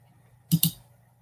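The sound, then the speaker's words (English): Two quick computer clicks in rapid succession, like a mouse or key being pressed twice, over a faint low hum with no talking; clicking to bring a shared item back up during an online meeting. “Little too much clicking went on there.”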